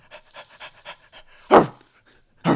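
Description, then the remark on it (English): A dog pants quickly and rhythmically, about five quick breaths, followed by two sharp, much louder vocal bursts with a pause between them. “This is a dog, you know that, right?”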